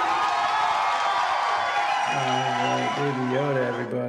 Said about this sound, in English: All right, everybody, give Baby Yoda a round of applause. Thank you, Baby Yoda. Woo!